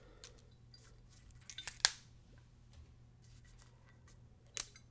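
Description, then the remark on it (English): A few quick crinkly rips as a thin plastic zip strip is pulled off the seal of a spirits bottle being opened, with one sharper snap near the middle and a softer crackle later, over a quiet low hum. “Need to pull a little zip strip.”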